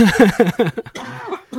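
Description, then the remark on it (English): A man, said to have COVID-19, coughs hard in a quick rhythmic series of harsh, voiced bursts, then trails off into a few weaker, ragged coughs, fairly loud. “So he's just coughing up a lung.”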